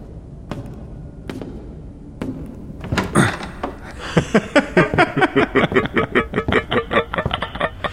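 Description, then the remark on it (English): A heavy door to the halls under an estate is worked open: a few sharp clunks and a louder bang, then a rapid, rhythmic run of creaking, rattling pulses, fairly loud, with no talking. “there's the door to the halls under the estate.”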